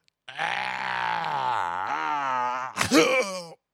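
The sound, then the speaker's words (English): A person imitates a Star Wars Wookiee roar: a long, loud, warbling groan that wavers and dips in pitch for a few seconds, then breaks into a short, rough, rising yelp. “How's your Wookiee noise?”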